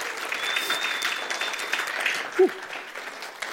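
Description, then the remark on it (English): Steady, sustained applause from a crowd, a dense crackling wash of many hands clapping at an even level, with a brief louder whoop standing out near the end. “Can we give them another round of applause, please?”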